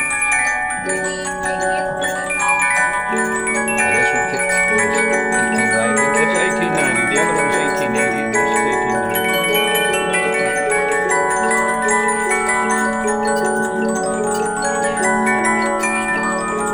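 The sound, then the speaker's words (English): A German disc music box plays a Christmas melody from a reproduction disc made in Vermont, its bright plucked metallic tones ringing steadily with sustained shimmering overtones, clear with no talking over it. “And they came up with this disc system. This is a German box.”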